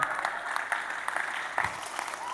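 An audience claps together in a dense, steady wash of applause, with a few sharper individual claps standing out and murmured voices faintly underneath.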